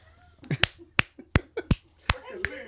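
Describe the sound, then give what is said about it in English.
About six sharp hand claps land at a steady, moderate pace, crisp, with faint voice sounds murmuring in the gaps between them. “We've already clapped like 8 times, so I'll reserve myself.”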